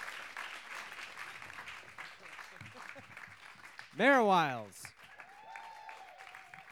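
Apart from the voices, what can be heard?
audience clapping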